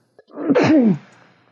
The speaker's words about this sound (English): Excuse me. Did you sneeze into your elbow? I did. Okay, good.